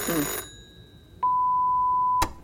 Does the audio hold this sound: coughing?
no